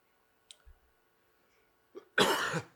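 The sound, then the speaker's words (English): A single loud cough bursts out near the end, preceded by a small throat click and a quick intake of breath, with no talking. “Let me get my cough done away with.”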